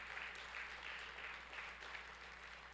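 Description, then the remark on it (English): A church audience breaks into sustained hand clapping in praise of God, a dense, steady wash of many hands applauding at once with no voices standing out. “If you know that, can you give me a hand clap of praise?”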